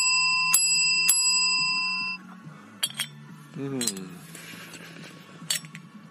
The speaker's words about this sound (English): Oh, the bell, it didn't sound right. Uh-oh. Hang on. Oh, my God. Something's broken on the bell. How does that work? Oh, that's better. Is it? I mean, I'm particularly sensitive to this bell.